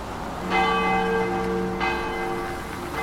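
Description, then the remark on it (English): A church bell tolls twice, roughly a second and a half apart, each strike ringing out with a rich, lingering hum that overlaps the next, fairly loud with no voices present. “Shamanic dance instructors, scaffolders, furloughed palm readers, and disgruntled key workers, all looking for kicks before the curfew chimes toll.”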